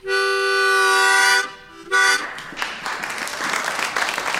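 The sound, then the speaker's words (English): An old steam locomotive whistle, the Tweetsie's call, from one of the old ET and WNC engines, gives a long, loud, reedy blast and then a brief second toot, followed by a rough, hissing wash of noise. “And if you listen very closely, you might just hear the Tweetsie's distinctive call.”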